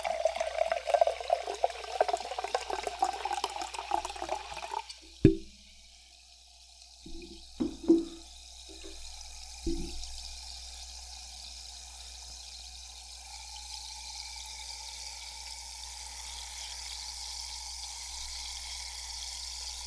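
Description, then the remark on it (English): Budweiser hard seltzer is poured into a glass, its gurgling pitch rising, followed by a few light clinks of glass and a steady soft hiss of carbonation bubbling. “All right, so let's pour.”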